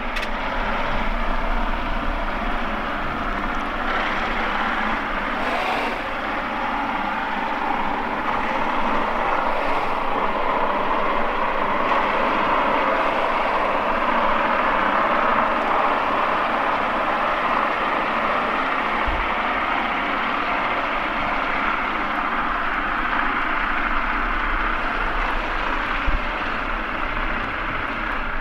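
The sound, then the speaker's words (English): The engine and gears of a huge barge moving from O'Connell Bridge up the River Liffey, heard underwater through a hydrophone: a continuous, muffled mechanical grinding with a steady low hum, holding an even loudness for the whole stretch, with no voices. “And underwater you can hear the gears and the engine grinding.”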